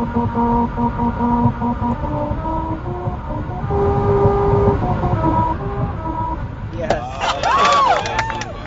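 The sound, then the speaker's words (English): A Honda Civic carrying a Honda team rolls over the Musical Road in Lancaster in hot sun, its tires droning out a series of buzzy sustained notes that step up and down in pitch over steady road rumble, then voices whoop and cheer. “The final shot shows them all piled into a roomy Honda Civic to hear.”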